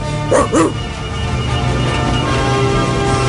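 A dog, doing a trick on the command to speak, gives two quick, sharp barks, one right after the other, then falls quiet over a steady low background hum.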